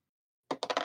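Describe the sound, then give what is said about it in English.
Dice tumble across a tabletop after a moment of silence, rolled to hit in a game and landing on a 5, producing a quick run of four or five sharp clattering knocks that bounce and settle. “That's a 5 on the dice.”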